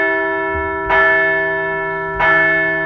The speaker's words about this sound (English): Let's ring the bell.